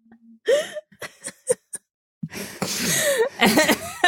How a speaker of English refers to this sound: This panting is so unsettling, upsetting, yes. Weird.